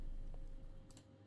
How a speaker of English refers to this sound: I'm just clicking. I just typed in similar artists.